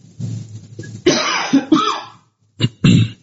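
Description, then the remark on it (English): A series of harsh coughs and throat clearing: a rough hacking burst, a brief pause, then two more short sharp coughs, with no talking. “I need to cough, so give me 1 second.”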